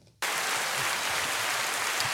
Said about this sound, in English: we have some guests in the house today. Clap it up, people. Clap it up.